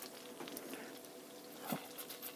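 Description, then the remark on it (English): A quarter cup of flour sizzles in a stick of hot unsalted butter in a soup pot over a medium burner to make a roux: a steady, hissing crackle with small pops scattered throughout and one brief louder burst of spattering partway through, and no voices. “You can hear it sizzle when it hits that hot butter.”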